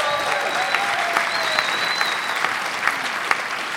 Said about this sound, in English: A round of applause for all of our contestants.